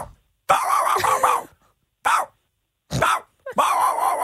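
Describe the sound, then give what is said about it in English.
A person imitates a dog barking, letting out a burst of loud, rough barks followed by a few shorter separate barks and a final drawn-out one, with no other talk. “I'm going to do it live.”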